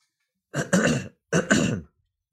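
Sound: throat clearing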